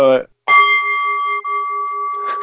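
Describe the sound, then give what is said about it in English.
A single bell strike rings out clearly with a sustained, shimmering tone lasting over a second, following a brief voice, and talking picks up again as the ring fades. “Do the bell, do it again.”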